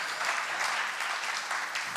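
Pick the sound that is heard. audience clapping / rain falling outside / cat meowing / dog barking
audience clapping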